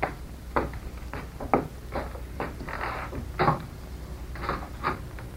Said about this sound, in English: No, Captain Midnight. We had better go into the next room. I will open the door.